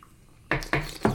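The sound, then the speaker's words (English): Ceramic coffee mugs clink together three times in quick succession in a toast, fairly loud, after a brief quiet moment with no talking. “All right. Clink. One, two, don't hurt anybody.”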